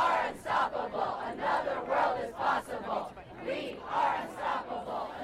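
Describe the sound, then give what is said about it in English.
About 500 climate strike demonstrators on the town green in the college town of Middlebury chant their demands for action in unison, loud shouted syllables pulsing in a steady rhythm of about two beats per second, with no pauses. “We began our day in the nearby college town of Middlebury, where about 500 people gathered on the town green to demonstrate our demands for action.”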